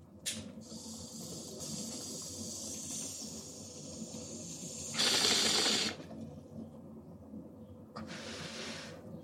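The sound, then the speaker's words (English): Steady gurgling of water bubbling through a bong, with a hissing draw of air over it and two stronger rushes of airflow partway through and near the end. “And we'll take this rip ironically before we start talking about this shit.”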